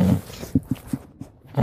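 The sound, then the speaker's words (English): A dog, being woken from sleep, growls low, a rough rumble that breaks into a few short, grumbling pulses before swelling again at the end. “My dog looks none too pleased that I'm waking him from his slumber.”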